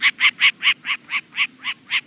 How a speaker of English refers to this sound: It's a short-eared owl, an owl especially adapted to hunt during the day.